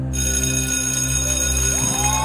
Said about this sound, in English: And you hear the bells ring.